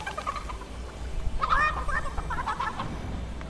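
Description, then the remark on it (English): A chicken clucks in a few short, throaty bursts around the middle, moderately loud, over a steady low background rumble. “I hear it. Where is it? Where's the chicken?”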